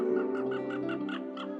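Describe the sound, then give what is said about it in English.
A bald eagle flying overhead gives a run of about six high, piping chitter notes in quick, even succession, moderately faint, over a steady low background hum. “Nice bald eagle flying overhead.”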